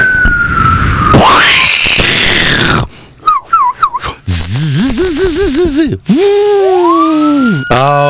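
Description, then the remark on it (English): A fireworks sound effect played on the Lemasters and Lewis radio program: shrill whistling tones sweep and warble up and down in pitch, broken by short gaps and bursts of loud hiss, with no one talking. “For everybody else, watch your radio carefully as we bring you the fireworks of the Lemasters and Lewis program.”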